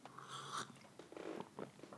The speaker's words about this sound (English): It can be allowing yourself a delicious sip of tea while you're recording a podcast.